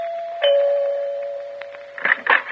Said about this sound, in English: I was so tired, I had to back up and take a running start to press the doorbell.